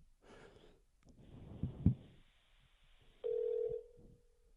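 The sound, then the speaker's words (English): A single loud, steady ringback tone on a phone line as a caller for a call-in show rings someone who does not pick up, following soft breathy sighs and faint line hiss, with no talking. “yeah, and you don't answer, that's your call.”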